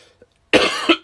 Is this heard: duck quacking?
no